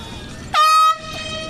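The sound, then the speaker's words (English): A single loud air horn blast signals a substitution in the 67th minute of a BYU versus Pacific soccer match, sounded about 15 yards or feet in front of the commentators, a bright, buzzy tone lasting under half a second over a steady murmur of crowd noise. “You heard the whistle or the horn, and why wouldn't you?”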